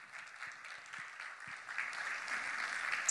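A crowd claps steadily, a dense wash of overlapping handclaps with no voices, building slightly louder toward the end.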